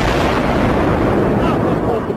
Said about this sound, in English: So, I think I know an explosion when I hear it. Do you know if it was an explosion or if it was a building collapse? To me it sounded like an explosion.